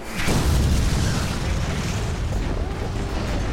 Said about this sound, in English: your brother, this pit fiend, come sailing, hurtling through the air, this hellish flame around him as he collides with one of the dragons, and they go screaming down, crashing into a part of the castle. Rubble is exploding everywhere.